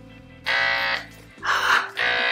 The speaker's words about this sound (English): there's a button on the back. And that's a vibrator. So not only is it going to suck you, it's going to vibrate your entire penis on the inside.